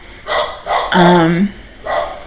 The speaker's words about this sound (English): Oh Lord. Sorry if you hear that. It's just my dog.